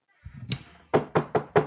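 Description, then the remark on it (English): Four firm, evenly spaced knocks on a door in quick succession, loud, preceded by a brief muffled thump. No voices. “That's Mr. T knocking at your door, and he is not too happy.”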